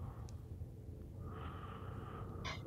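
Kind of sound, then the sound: human body sound, heavy breathing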